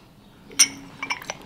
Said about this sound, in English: All right, I'll let you both just lift up the lid and sniff that.